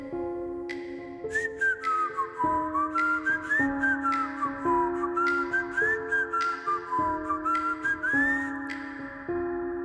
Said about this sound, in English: It was an old-timey whistle, like a... It took me a second. It was like, am I still dreaming? You know, am I really hearing this? I sit up in bed. I look around and I'm definitely awake and I definitely can hear somebody whistling a song.